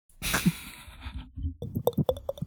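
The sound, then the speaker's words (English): A voice imitates water pouring into a glass: a breathy hiss gives way to a quick run of wet, gurgling pops that rise in pitch as it goes. “Filling up a glass of water.”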